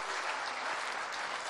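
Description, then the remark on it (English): Steady applause from an audience for the Holy Spirit, a dense wash of many hands clapping at even loudness throughout, with no voices over it. “Let's just give the Holy Spirit a round of applause.”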